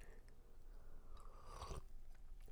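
A single slurping sip of hot coffee, a brief airy burst in the middle of an otherwise quiet stretch, with no one talking.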